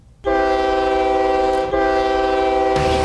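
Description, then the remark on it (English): A loud, sustained train horn blares twice in close succession over a steady rumbling of a rolling train, with a hiss of noise near the end and no voices. “The tournament train is... Yes, the tournament train has a stop on Title Tuesday.”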